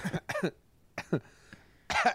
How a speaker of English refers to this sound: Coughing over here.